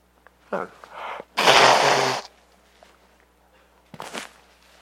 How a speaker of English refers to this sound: Sorry, I'm going to blow my nose, and it's going to come through.